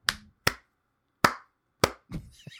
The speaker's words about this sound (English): All right, let's give a 3 clap. So I'm going to clap 3 times.